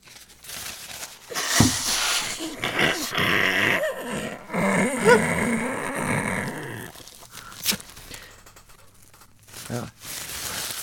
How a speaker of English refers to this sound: I kind of got carried away blowing my nose.